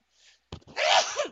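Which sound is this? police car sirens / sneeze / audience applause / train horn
sneeze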